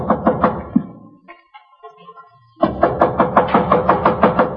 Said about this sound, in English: Our scene opens in a corridor of a Metropolitan Hotel. A man with a briefcase in his hand has been knocking impatiently at one of the room doors.